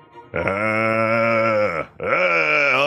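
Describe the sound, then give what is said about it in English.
A zombie named Bub lets out two long, low growling groans, the first sustained for over a second, the second rising slightly in pitch after a brief pause. Loud and alone, with no words. “Dude, Bub, did I hear you growling brains?”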